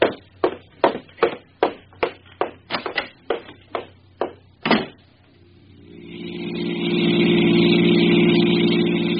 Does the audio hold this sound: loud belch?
no